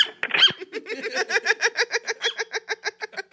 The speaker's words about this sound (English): Turn off that dog. That dog sound is terrible.